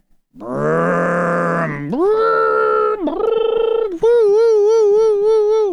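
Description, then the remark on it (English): A voice imitates a kid playing with Hot Wheels toy cars, making loud, sustained engine-like vroom sounds in four rising and falling segments, the last one wavering with a revving vibrato. “All day long, the kid with the Hot Wheel cars. That's what I hear.”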